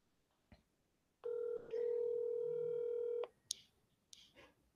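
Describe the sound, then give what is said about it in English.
Phone dialing tones from an outgoing call: a short electronic beep, then a longer steady tone, loud, followed by a few faint clicks and rustles. No one speaks. “I'm going to call her. I'm calling her.”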